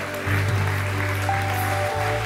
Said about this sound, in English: We're going to cheer. We're going to clap. Come on, you come. You come. You come. Come on. Come on, church.